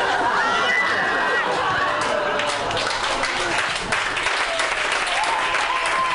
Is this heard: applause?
yes